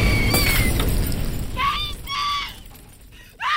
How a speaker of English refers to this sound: There was a sudden burst of energy, and the window exploded in a shower of glass.